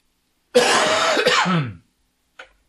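A person coughs loudly: one long, harsh, raspy burst lasting over a second, with a rough throaty edge, followed by a brief faint catch of breath.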